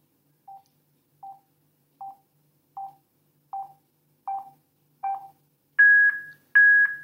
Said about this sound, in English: now I've just released it now, and that's when I heard the last very, very soft beep coming out of the speaker. So I'm going to hold the volume up on in now, and you hear the beeps as they get louder.